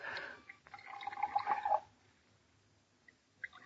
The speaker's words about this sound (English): Now, two glasses, please. Brandy snifters, of course. If anyone should see us, Mr. Brown, I'll pour, Elsie. You and I are going to sample this.